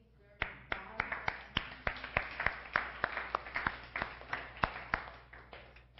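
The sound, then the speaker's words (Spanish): A church audience applauds Jesus during a sermon, with a steady wash of many hands and sharp, prominent claps cutting through it at a quick, fairly regular pace for several seconds, with no talking over it. “¿No merece un aplauso?”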